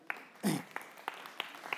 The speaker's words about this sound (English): That's it. That's a non-spontaneous round of applause, but we'll take it.